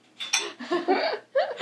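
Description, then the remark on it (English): Glasses clink together in a toast: a few bright, ringing taps in quick succession, each with a short shimmering tail, at a moderate level. “Cheers. Cheers. Cheers.”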